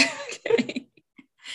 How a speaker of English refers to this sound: Oh, I'm going to pause 1 second here because I feel a coughing spell coming on. Okay. Pause momentarily, and I'm going to mute my mic so that you don't have to suffer through this with me.